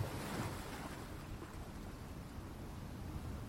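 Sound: ocean waves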